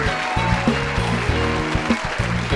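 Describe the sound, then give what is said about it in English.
A studio audience applauds steadily, a dense wash of clapping that stays loud throughout, with an upbeat musical accompaniment playing underneath. No one speaks. “Oh, no need for all this applause.”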